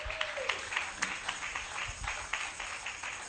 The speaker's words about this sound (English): Clap your hands for the Lord.